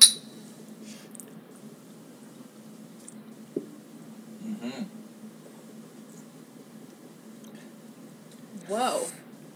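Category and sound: food or drink, glasses clinking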